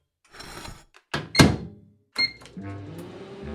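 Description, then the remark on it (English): A microwave door thumps shut with a sharp clatter, a short electronic beep sounds, and then the oven starts up into a steady, low humming drone that continues to the end, heating tortillas covered with a damp towel for about a minute. “And let's pop this in the microwave for about a minute.”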